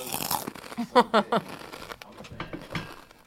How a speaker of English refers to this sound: I'm eating salt and vinegar kettle chips.